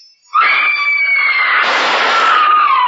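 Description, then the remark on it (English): A single loud, high-pitched scream bursts in after a brief silence and holds steadily for over two seconds, shrill and piercing, growing rougher and more strained toward the end. “That scream, high enough to shatter crystal.”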